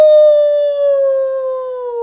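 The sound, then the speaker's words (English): A person gives a loud imitation of a wolf howl, "Ow!": one long, sustained vocal tone lasting about two seconds and sinking slightly in pitch. No other sounds or speech. “And a wolf. Ow!”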